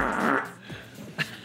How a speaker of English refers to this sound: That is a loud fart to get from there to there.